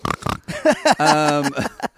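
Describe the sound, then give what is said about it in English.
A person imitates a pig, making a few quick snorting grunts followed by a drawn-out nasal squeal and a couple of short snorts, fairly loud. “Someone said disgusting pigs, and I kind of went.”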